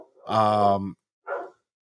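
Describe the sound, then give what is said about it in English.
A pet dog barks: one long, drawn-out, loud bark followed after a brief pause by a shorter, breathier one, with no one talking. “And if I can, I'm about to, like, kill my dog right now.”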